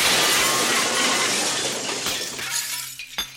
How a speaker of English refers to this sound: So anyway, the second she passes over the threshold, one of these plate glass windows comes dropping down exactly where she was standing.